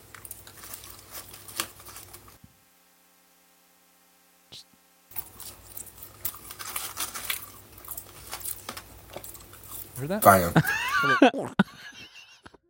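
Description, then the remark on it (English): Crinkly chewing of a french fry by a man, with soft squishy crunches, then a swallow, broken by a short silence. People talk over it, and a loud, warbling vocal outburst rises near the end. “That's just him swallowing.”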